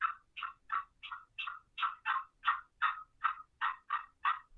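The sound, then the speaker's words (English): A wooden box call, barely opened and worked with flicks of the wrist, makes a steady series of about thirteen short, raspy clucks, evenly spaced and fairly loud, mimicking a hen clucking as she walks. No one speaks. “I try to sound like a hen, you know, and it's just a hen that's walking.”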